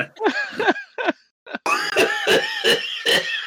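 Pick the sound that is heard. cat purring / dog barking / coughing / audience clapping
coughing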